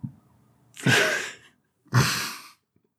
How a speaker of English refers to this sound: Careful. Watch out. They're gonna get you if they hear you burping. The police are coming after me. The police are gonna get you if they hear you burping. You know that's not allowed here.